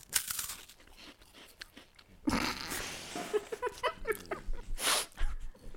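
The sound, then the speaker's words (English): A dry Pink Panther wafer biscuit gets bitten with a sharp, crisp crunch, followed by several seconds of irregular, crackly chewing bursts of varying loudness, with no talking over it. “I'm going to have a tiny bite.”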